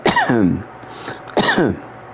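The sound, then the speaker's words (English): Two loud coughs about a second apart from a person with a persistent cough, each a rough burst trailing into a raspy, voiced rumble, like clearing a stubborn throat. No one speaks. “Sorry about that again, friends. I have a persistent cough that isn't going away.”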